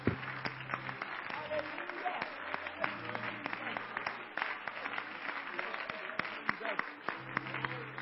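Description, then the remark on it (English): A crowd applauds steadily for several seconds as a hand clap of praise to the King, many hands clapping in a dense, crackling wash with sharper individual claps standing out, while a low sustained tone hums underneath. “You ought to give the great King a hand clap of praise that He's deserving and worthy of.”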